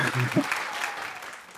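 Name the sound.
applause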